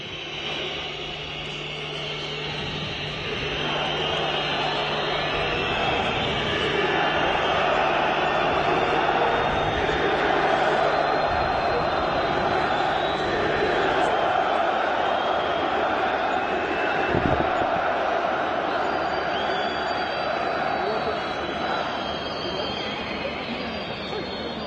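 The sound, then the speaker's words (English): A huge football stadium crowd in Turkey roars and chants during a moment of silence for the victims of the Paris attacks, with chants including "Allahu Akbar"; a dense wall of massed voices with rhythmic swells and shouts rising from the din, loud and unbroken throughout. “I don't know if you could pick that out, but among the chants screamed at the game, Allahu Akbar.”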